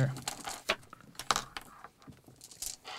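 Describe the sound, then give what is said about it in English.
Four dice are rolled all at once into a dice tray, clattering and tumbling in a burst of sharp, uneven clicks and rattles over a few seconds, with faint voices in the background. “So you take dice. All 4 of those, and you're going to roll them all at once.”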